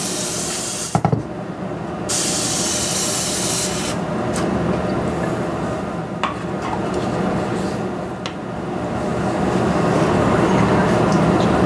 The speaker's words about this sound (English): Then we spray the pan and the aluminum foil with a little Pam.